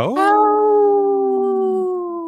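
A single long wolf howl swoops upward at the start, then holds a steady, clear, mournful tone for about two seconds before fading slightly at the end.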